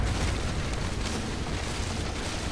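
A mine entrance caves in with a terrible crash that echoes through a mountainous region and traps the workers inside: a loud, steady rumbling roar, heavy in deep bass with gritty noise above, holding for a few seconds with no voices.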